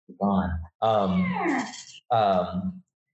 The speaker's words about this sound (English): hey, sorry, the cats are fighting right in my lap. Jeez Louise, gone.